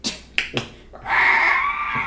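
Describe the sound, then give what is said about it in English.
A door gives a long, wavering high-pitched squeak that runs for about a second, following a few sharp clicks or taps. No one speaks. “That was a squeaky door.”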